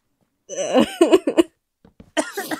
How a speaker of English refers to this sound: I sneezed, and the sauce...